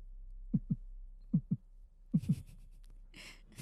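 A low, muffled heartbeat sound effect for Jimmy John's heartbeat picking up thumps out three lub-dub pairs at a steady, slightly quickened pace, with a faint breathy hiss rising near the end.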